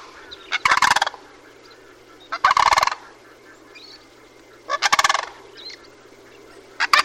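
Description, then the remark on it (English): Sandhill cranes, a male and a female leaping into the air in turn as a bear comes within sight, give loud, harsh rattling alarm calls in three clear bursts plus the start of a fourth, spaced a couple of seconds apart, with a faint steady background hum and no talking. “And at that point, the cranes began leaping into the air. First the male, then the female, then the male again. Back and forth, and vocalizing their alarm calls.”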